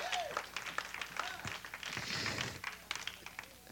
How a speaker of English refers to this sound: Give God a hand clap of praise, church.